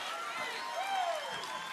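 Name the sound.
audience clapping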